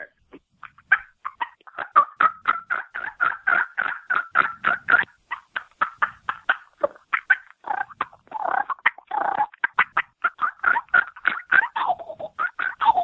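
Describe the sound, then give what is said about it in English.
A person imitates a turkey with a long run of rapid, rhythmic gobbling and clucking notes, steady and fairly loud, with a few warbling, wavering yelps toward the end and no talking. “Yeah, let's do a turkey. Let's hear the turkey call.”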